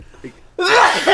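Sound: sneeze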